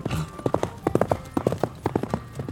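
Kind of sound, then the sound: animal, horse hooves clip-clopping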